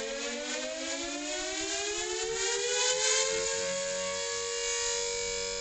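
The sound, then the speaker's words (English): An air raid siren wails steadily, its tone slowly rising in pitch as it holds a loud, continuous drone, with no voices present. “Can you hear the air raid siren?”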